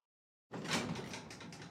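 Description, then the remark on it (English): After a brief silence, an elevator door dings, then abruptly rumbles and slides open with a steady mechanical whoosh that carries on, moderately loud, with no voices. “The elevator door dinged and I stepped forward”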